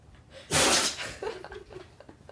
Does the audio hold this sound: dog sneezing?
yes